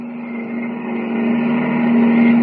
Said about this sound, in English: On the open road outside the city limits, Kent jams the accelerator down to the floorboard and grips the wheel hard. Roaring into the night, his keen eyes watch the twin taillights gleaming ahead of him.